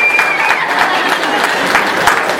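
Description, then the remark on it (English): A church crowd applauds Frank, an adult who works behind the scenes, many hands clapping in a dense, even patter that holds at a fairly loud level throughout, with no one speaking over it. “Let's give Frank a round of applause.”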